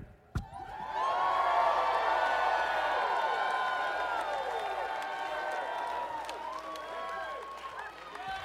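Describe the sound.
An audience bursts into loud, sustained screaming and cheering, showing how they would react to being handed $10,000; many high voices overlap in a dense roar that holds steady for several seconds before thinning slightly toward the end.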